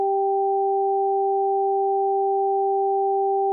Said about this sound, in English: The pattern I devised consisted of two tones that were spaced an octave apart and alternated repeatedly. The right ear received the sequence high tone, low tone, high tone